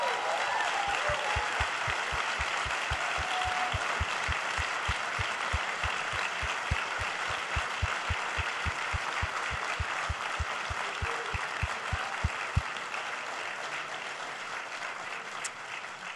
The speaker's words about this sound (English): we want to just take a moment to honor anyone who's here who has served in the armed forces or who is currently serving. And so if that's you, would you just stand so that we can applaud you as a way of honoring you and thanking you for your service?